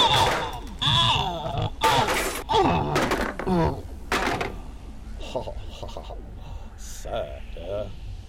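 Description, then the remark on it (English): A flurry of heavy thuds and whacks as a musician knocks out a man with his mandolin, six or so blows over a few seconds. They are mixed with grunting and groaning vocal sounds, then quieter rustling and shuffling. “Dude, you just fucking knocked out … with your fucking mandolin?”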